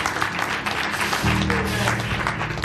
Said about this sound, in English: Clap your hands for God.